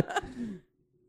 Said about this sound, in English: Well, that's not good for audio. Okay. You rubbing and fucking smacking the goddamn mic like a degenerate.